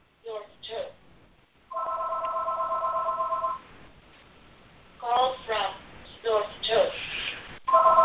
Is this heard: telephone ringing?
yes